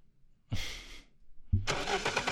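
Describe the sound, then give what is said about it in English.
A car engine cranks in a short burst, pauses, then turns over again and catches, revving into a loud, steady run. It is clear, with no voices. “Well, I think we should just hop in the car and head to our next destination. Play my favorite sounder.”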